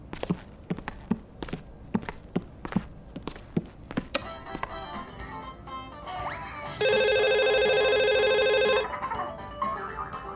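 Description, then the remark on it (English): A telephone rings loudly with a call from the new Avon lady in town, one sustained, buzzing electronic burst lasting about two seconds, preceded by a series of steady, rhythmic thumps like footsteps or knocking, with no talking. “But I'm taking my phone with me in case Dada calls again.”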